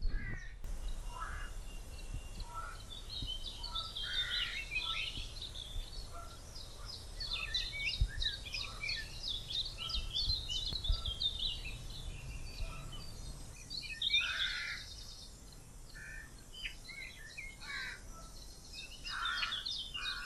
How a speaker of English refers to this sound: Oh, I can't keep up with all the different species singing now.